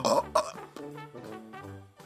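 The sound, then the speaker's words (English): A drawn-out, croaky burp that starts with a couple of loud voiced bursts and then stretches into a long, low, wavering rumble before a final short gulp. “Oh, I got a burp.”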